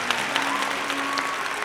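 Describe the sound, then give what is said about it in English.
Steady applause from a crowd, dense clapping at a fairly even level, with a faint sustained tone running underneath and no one speaking. “What a splendid crowd y'all have been.”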